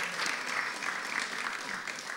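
Audience applause fills the whole stretch, a dense, steady patter of many hands clapping at an even level with no voices rising above it.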